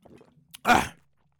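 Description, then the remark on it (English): Someone takes a quick sip of water: faint low handling sounds and a small click, then a short, loud, breathy slurp-and-gulp lasting about a third of a second, with no talking. “I drink a little bit of water.”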